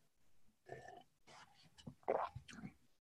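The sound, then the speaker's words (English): Someone takes a sip from a glass of water with a little kombucha in it, with a few short wet slurping and swallowing sounds in quick succession, quiet with no talking. “So I have a glass of water, has a little kombucha in it, right? So I'm going to take a sip.”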